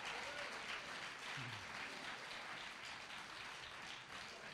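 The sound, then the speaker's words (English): A crowd claps for Jesus, many hands clapping steadily in a dense, continuous wash of sound that holds at an even level throughout, with a faint voice briefly audible underneath. “Come on, clap for Jesus.”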